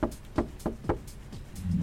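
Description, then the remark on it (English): A gentle knocking on a backstage dressing room door: about five soft, hollow raps in an unhurried, slightly uneven rhythm, fairly quiet, with no voices. “Just a gentle knock.”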